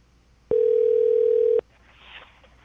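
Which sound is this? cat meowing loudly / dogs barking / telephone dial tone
telephone dial tone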